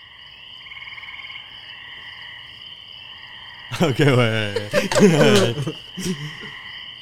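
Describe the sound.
A person imitates a little frog with a loud, drawn-out croaking voice for a few seconds, over a steady background chorus of chirping and trilling.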